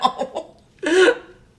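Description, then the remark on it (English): A throaty gurgle from a person's throat, not a burp, made while opening the mouth to put on lipstick: three quick, soft pulses, a brief pause, then a louder, longer gurgling burst with a wobbling pitch that fades out. “I would call it a gurgle. But, like, you do think of a gurgle as, like your stomach gurgles.”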